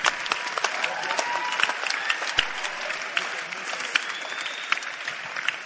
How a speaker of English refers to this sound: Clap for Jesus, somebody.